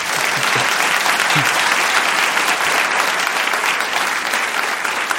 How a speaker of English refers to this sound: …, welcome to Intelligence Squared. Hi. And spontaneous applause.